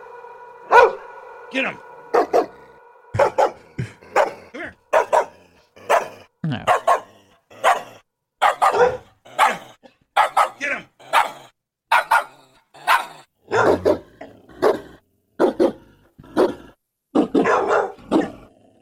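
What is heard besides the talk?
dog barking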